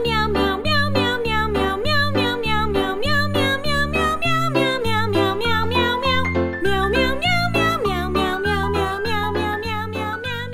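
The Meow Mix cat food jingle: a voice sings a steady, bouncy chain of repeated "meow" syllables over a loud, rhythmic musical backing with regular beats, continuing without pause throughout.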